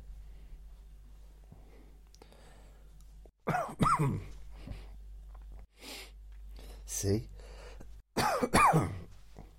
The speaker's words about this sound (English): I normally edit out coughs, but I'm just leaving it in just for the sake of the drama, the whole thing.